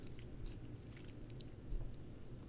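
Wet chewing of a crunchy chip with the mouth open, a steady run of smacking, crackling bites over a low background rumble.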